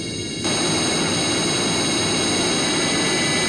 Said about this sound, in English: Listen to that. 0-20 seconds. The sound of this planet screaming out its rage.